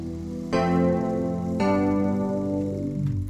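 A MIDI file of a song's chord sequence, made by an audio engineer named Connor, plays on its own: three sustained synthesized chords change roughly once a second, steady and fairly loud, and the pitch of the final chord sags downward near the end.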